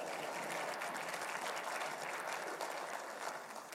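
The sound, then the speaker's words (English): A steady round of audience applause for the crew who change the slides, dense overlapping claps forming a continuous crackling wash that holds even for nearly four seconds before easing slightly at the end. “So let's give the crew a round of applause.”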